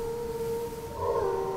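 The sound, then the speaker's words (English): A giant, Force-sensitive Loth wolf on the planet Lothal howls in one long, steady note that holds its pitch and swells louder toward the end, with no talking, just a faint low rumble underneath. “The giant Loth wolves that hunt here are Force-sensitive”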